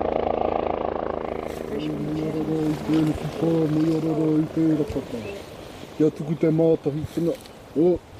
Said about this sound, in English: And here's the chopper, 100 chicks, 3 people.